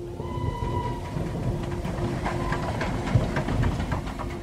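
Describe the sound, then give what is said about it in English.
A train engine idles at a small railway station at the edge of Tipperary town, its deep steady rumble steady and loud, with a faint humming whine over it and scattered clanks and knocks. “On January the 6th, 1921, a crowd gathered in the small railway station at the edge of Tipperary town.”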